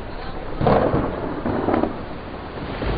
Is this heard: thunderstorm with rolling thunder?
yes